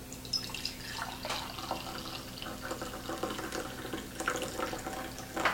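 Freshly brewed natural Santo Domingo drip coffee is poured steadily into a cup, a continuous splashing trickle of liquid lasting several seconds with slight gurgles, no voices present.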